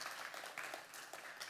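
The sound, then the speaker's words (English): Steady applause from a crowd giving a round of applause for God and for everyone who serves there, a dense wash of many hands clapping with no clear individual beats, holding at an even level throughout. “So I wanted us to just pause and just give a round of applause for the God that brought us all together and just everyone that serves here.”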